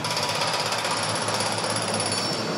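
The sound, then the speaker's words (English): A jackhammer pounds away at roadworks, a loud, continuous rapid hammering that fills the whole clip with harsh, gritty noise and no voices. “Maybe the local roadworks that are taking too long.”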